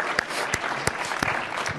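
A short burst of applause from a group for the answer Cassiopeia, a dense steady patter of clapping with a few sharper, louder claps standing out, heard without any talking.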